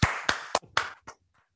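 Brief, sparse applause, presented as the listening audience applauding: about five sharp claps from what sounds like a single pair of hands, uneven in rhythm, the last ones quieter and trailing off into silence. No one speaks.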